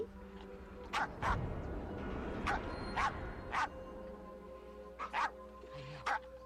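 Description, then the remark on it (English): A dog barks sharply about eight times in irregular bursts, some doubled, loud against a low steady hum, with no talking. “That didn't mean she was alone. Her dog was a racist.”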